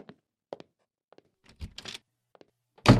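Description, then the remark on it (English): A few light footsteps cross, then a door closes shut with a loud, heavy thud at the very end, with no talking. “Don't bother showing me to the door.”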